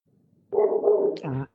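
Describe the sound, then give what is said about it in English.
A dog lets out a couple of drawn-out, yowling barks that run together over about a second, clear after a near-silent start, with no talking. “The dogs agree too, Nick. I can hear it.”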